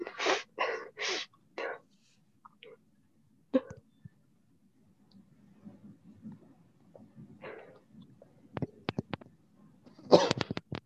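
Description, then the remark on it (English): A quick cluster of sharp, breathy coughs, followed by a few scattered gasps and murmurs, then a final loud burst of coughing near the end. “That was a cough.”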